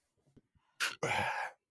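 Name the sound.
belch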